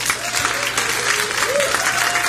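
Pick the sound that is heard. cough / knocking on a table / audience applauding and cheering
audience applauding and cheering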